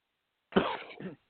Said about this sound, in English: I hope I kept the coughing to a minimum.